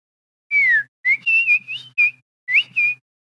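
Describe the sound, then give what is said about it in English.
A pet bird named Spunky whistles in a cage next to a phone. It is a run of bright, high warbling phrases in several short bursts with brief pauses between, fairly loud and alone with no talking. “No, I accidentally had the phone set next to the birdcage.”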